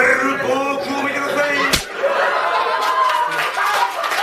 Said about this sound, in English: And the staff at the restaurant, that's what they do. They slap you in the face. Listen to this sample right here. This is actually from the restaurant.